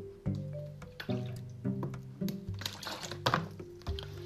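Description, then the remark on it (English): Someone takes a drink of water, with soft gulping and trickling liquid sounds broken by small clicks and taps. No one speaks. “Excuse me, I just need to drink some water.”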